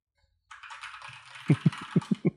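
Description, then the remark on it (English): Clicky keystrokes on a new mechanical keyboard, starting with a soft clatter and then six loud, evenly spaced, distinct key presses, with no talking. “It is mechanical, yeah, because I want everyone to know when I'm typing.”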